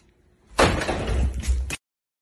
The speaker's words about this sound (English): So here's the video of the door one more time.